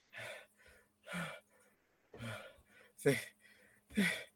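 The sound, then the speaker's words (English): Five heavy, heaving gasps for air in a steady rhythm, each a loud, rough breath with short pauses between, from a turtle that has heaved itself out of a pond and flopped down on its side, struggling to breathe as if utterly exhausted. “Heaves, breathing.”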